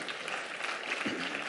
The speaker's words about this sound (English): Come on, give him a hand clap of praise on that one.